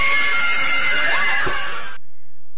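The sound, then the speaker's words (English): A crowd of people scream together in panic, a loud, dense wall of overlapping shrieks lasting about two seconds before cutting off abruptly into silence. “I don't want to be one of those screaming stick figures here.”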